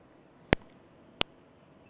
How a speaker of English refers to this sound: I'm calling about the clicking noise on your phone line. Can you hear that? Sounds like a metronome.